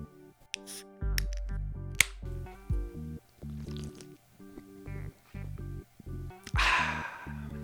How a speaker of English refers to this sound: Sound Growler Brewing Orange Haze West Coast IPA. Let me crack it open for you.